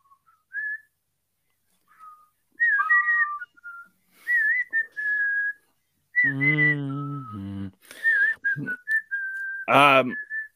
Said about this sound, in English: Can you whistle? I can.